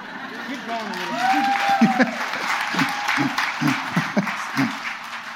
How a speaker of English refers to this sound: They wanted you guys to keep applauding.